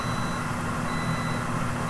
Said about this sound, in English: I mean, what are you doing? You breaking my shit? No, I shut it off and it's still beeping. Oh, we're good. All right. We'll let that cool down, you know?